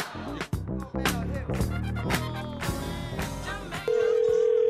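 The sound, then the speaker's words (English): A busy run of tones and sharp clicks, like a telephone being dialed for a prank phone call, then a steady, loud telephone tone sounding on its own as the line starts ringing. “And then, the right up after that, right up next, is the prank phone call.”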